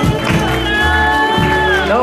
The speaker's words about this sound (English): Give God a hand clap.